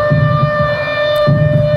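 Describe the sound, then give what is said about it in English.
A loud alarm siren sounded in Pakistan during a declared emergency over locusts holds one steady, buzzy pitch throughout, over a low rumbling throb that pulses about once a second, with no one speaking. “Pakistan has sounded the alarms.”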